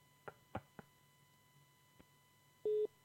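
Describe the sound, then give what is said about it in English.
A few sharp clicks on a quiet phone line, then a loud, buzzy electronic telephone tone that starts and stops in short pulses, an odd-sounding dial tone rather than the usual steady hum. “It's not a normal dial tone either.”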